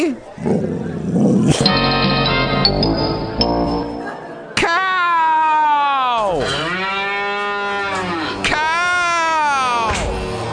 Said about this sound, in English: Ouch. Cow! Get along, little doggy. Woo! Oh no, the cows are coming for us. They're knocking everything over. Wow! Cows.